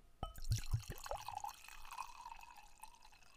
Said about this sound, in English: You gonna go ahead and get that wine poured up.